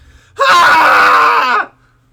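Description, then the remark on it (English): A single loud, sustained cathartic human scream, raw and full-throated, let out after a countdown of 3, 2, 1, lasting just over a second before cutting off into quiet. “So find a place where it's safe to scream along with me, and let's do it together.”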